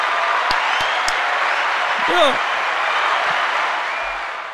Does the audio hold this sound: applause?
yes